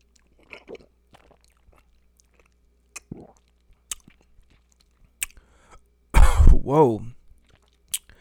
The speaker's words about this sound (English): when you taste this, you want to do that Kentucky chew where you kind of chew on a little bit